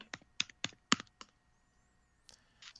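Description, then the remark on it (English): Quick keyboard typing: a burst of sharp, irregular key clicks, a short pause, then a few more keystrokes. No voices. “Oops, someone's typing away.”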